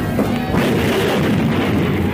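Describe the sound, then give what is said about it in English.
A sudden, loud crash erupts just after the start, a heavy smashing impact as a man crashes through a wall at the end of a corridor, followed by a sustained rumbling tumble of debris with no voices. “Great Hera, he crashed through that wall as if it were cardboard.”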